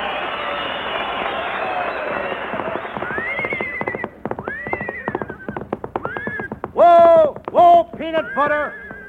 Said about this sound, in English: Oh, what do you think it is? It's a horse, isn't it? Certainly it's a horse. What does it look like?